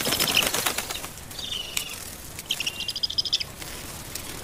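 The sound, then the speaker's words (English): Black kite wings, raptors of the New Delhi skies, flap loudly in rapid beats: a burst of beating at the start, then a pause and quick repeated flutters, with faint high chirps mixed in. “They're beautiful birds, raptors that dominate the New Delhi skies.”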